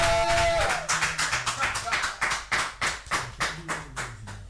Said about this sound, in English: Somebody clap for Jesus.